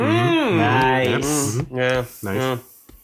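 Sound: sneeze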